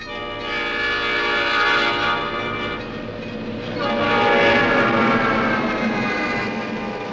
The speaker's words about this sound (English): and then a sound of a train whistle to end this song. Yeah, a nice touch at the end.